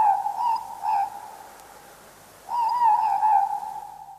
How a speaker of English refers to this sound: That sound is aruru, an owl. But not just any owl, it was a morepork. Listen again. And it's like the ruru, the owl, is saying more pork. More pork.